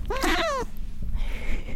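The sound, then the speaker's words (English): A 19-year-old cat lets out a single drawn-out meow, fairly loud, rising then trailing off, followed by a moment of quiet. “The old meow. The 19-year-old meow.”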